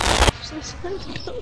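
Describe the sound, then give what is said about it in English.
A loud, sudden video game explosion bursts at the very start as a meteor spawns and strikes just in front of the player. The harsh, roaring blast cuts off quickly, leaving quieter game sounds and faint voices afterward. “Oh my god, a meteor just spawned in front of me.”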